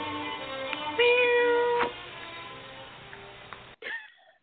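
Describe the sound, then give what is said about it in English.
A cat gives a single drawn-out meow, fairly loud, with a rising then falling pitch, followed by a quieter rustle and a brief short sound near the end. “Here, kitty, kitty, kitty.”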